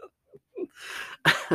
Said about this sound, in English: I'm disgusting. I just like burped and then we're in here like record.